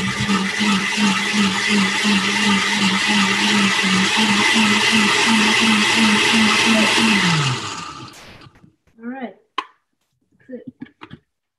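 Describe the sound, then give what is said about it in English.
A blender with a little water added whirs loudly for about seven seconds with a steady pulsing motor tone, then winds down and stops, followed by a few brief bits of speech. “All right, here comes a little blender noise, guys.”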